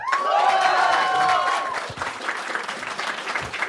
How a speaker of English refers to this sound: Okay, all right. Round of applause.